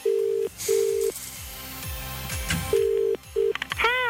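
Steady electronic phone tones sound in short bursts, like a call being dialed and ringing out, with a warbling ringtone chirp near the end; close and clear, no talking.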